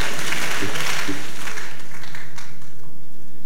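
An audience claps their hands during a sermon in a dense, steady patter of overlapping claps that gradually thins out over a few seconds, with faint murmuring voices underneath.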